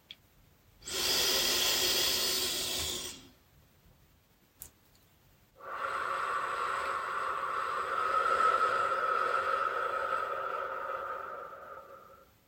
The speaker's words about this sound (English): Snuggle up, take a slow, deep breath in through your nose, and let the gentle exhale carry any lingering thoughts into the peaceful night.